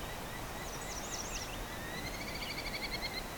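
Two territorial Merlin falcons call during a breeding bird survey: a few high, wavering cries, then a rapid, steady series of sharp repeated notes over constant background hiss, with no one talking.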